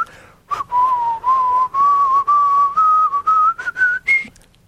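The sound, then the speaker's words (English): Someone whistles a phone ringtone melody, a clear sustained whistle that climbs slowly in pitch over a few seconds, with short breathy bursts breaking in between the notes. “Me, whistling along.”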